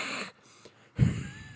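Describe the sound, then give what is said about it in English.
A person imitates a goose's hiss with a loud, breathy rasp, a brief pause, then a second throaty burst that trails off into airy noise. “They fucking hiss. You ever heard one hiss? They go...”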